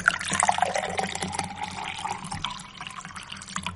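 Water pours steadily into a glass, a continuous splashing trickle with bright gurgling tones that eases off slightly toward the end, with no talking.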